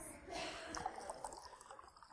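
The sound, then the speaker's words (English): A drink is poured into a cup, a steady splashing trickle lasting a couple of seconds at a fairly quiet level, with a few bright drips toward the end. “I'm going to give you a drink. Which cup do you want?”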